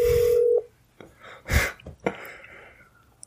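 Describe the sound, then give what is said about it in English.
The fourth ring of a telephone call: a steady, buzzy ringing tone hums over the line for about half a second, then cuts off, followed by a few short breathy bursts and faint clicks. “We're about to hit ring 4. There it is.”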